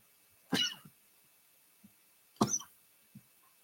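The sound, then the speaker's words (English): Two sharp, explosive sneezes about two seconds apart, each a loud burst that trails off quickly, with small breathy sounds in between and no talking. “I feel like I want to sneeze, so if I do...”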